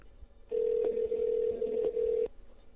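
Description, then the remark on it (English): A single ringback tone from a phone call to a GameStop store plays, a steady mid-pitched electronic buzz lasting almost two seconds before cutting off, with no voices. “GameStop, and we're calling.”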